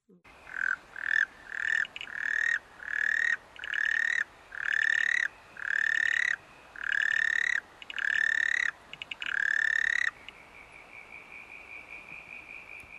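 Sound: frog calling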